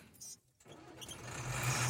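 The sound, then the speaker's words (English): A truck engine turns over, pauses for a split second, then catches and roars to life, its low rumble swelling steadily louder with no voices, on a dirt road. “truck roared down the dirt road, kicking up dirt”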